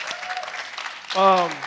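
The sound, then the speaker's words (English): An audience at an evening event in the St. Louis Art Museum applauds with dense, steady clapping, and partway through a single voice calls out loudly over the ongoing applause. “Give yourself a round of applause for coming out tonight.”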